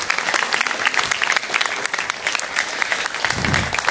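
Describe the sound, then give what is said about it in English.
An audience applauding steadily to welcome a speaker up, a dense wash of clapping hands that stays loud and even throughout, with a brief low rumble near the end. “So why don't we give it up, a nice big round of applause”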